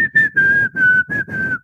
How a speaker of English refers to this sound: Well, I'm just saying this is the song that I was going to pick. The whistling in the middle of the song, the... Yes!